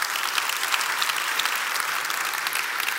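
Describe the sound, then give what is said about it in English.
Steady applause from an audience: many hands clapping in a dense, even wash of crisp bright claps that holds at a constant level for the whole stretch, with no voices over it. “Let me also say, you can clap.”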